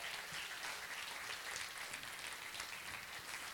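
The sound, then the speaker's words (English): An audience applauds its pastors steadily, many hands clapping in a dense, crackling wash of sound that holds at an even level throughout, with no voices on top. “Well, first of all, can you guys give a hand clap for your pastors while they're on vacation?”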